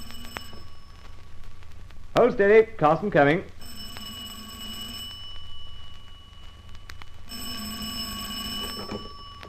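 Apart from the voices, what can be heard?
telephone ringing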